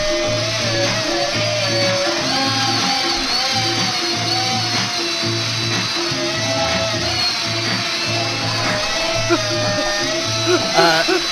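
A power drill runs continuously for about eleven seconds, its loud buzzing whine wavering slightly in pitch over a low rumble that pulses in a steady, regular rhythm.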